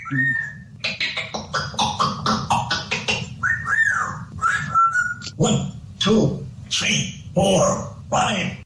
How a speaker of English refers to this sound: That's him? That's him now. That's the whistle now.